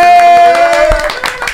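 An audience claps in a quick, uneven patter of sharp hand claps, loud and steady, over a sustained musical tone that fades out partway through.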